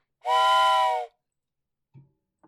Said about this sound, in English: Can I blow the whistle? Yeah, blow the whistle.